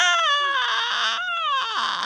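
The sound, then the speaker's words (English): A voice imitates a snake noise with one long, loud, whining wail that wavers and dips in pitch for about two seconds, a breathy hiss riding on top, with no words spoken. “And I wanted to see how long I could make the snake noise.”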